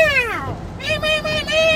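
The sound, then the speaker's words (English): A person imitates a fox's squeak: a high, cat-like falling squeal followed by two sustained, nasal squeaking cries, fairly loud, with no other talk. “You ever heard a fox? No. You go, you squeak.”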